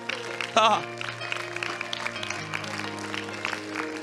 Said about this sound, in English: Come on, if you are thankful for all the benefits, come on, it's time to rejoice. It's time to clap our hands unto the Lord.